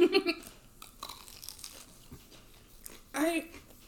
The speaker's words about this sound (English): There's some more ASMR for you. I know, I've been chewing, like, right in front of it, and I'm like, this isn't supposed to be, but you're welcome.